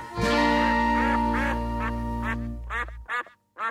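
A duck quacks in a quick series of loud, raspy calls, layered over a sustained low tonal drone that cuts off near the end, leaving a few final quacks standing alone.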